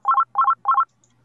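A phone rings with an electronic ringtone: three quick, evenly spaced bursts of trilling double beeps, loud, followed by near silence. No one speaks.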